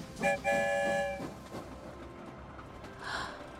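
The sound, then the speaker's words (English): A train rumbles along the rails past a long green field of grass in Ireland, opening with a short, bright whistle blast, then settling into a steady low rolling clatter at moderate volume, with no voices. “We've arrived in Ireland, and the story train is rolling past a long green field of grass.”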